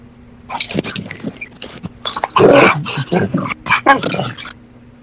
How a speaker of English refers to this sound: What was that? Oh, a dog got in here.